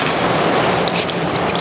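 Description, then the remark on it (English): Water pours steadily into a bowl set inside a heavy vessel, a continuous splashing and trickling stream with bright, bubbly tones, running the whole time without any talking. “What do you think we put in the bowl? Water.”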